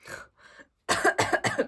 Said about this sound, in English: Sorry, I'm gonna yawn. Oh dear. Okay, I'm not bored, I promise.